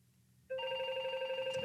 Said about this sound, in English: Bloody phone again.